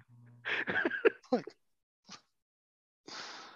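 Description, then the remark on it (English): A man coughs up water after choking on it: a cluster of harsh, sputtering coughs, then a short pause, a single small cough, and another rough, breathy coughing burst at the end. “but he's too busy coughing up water.”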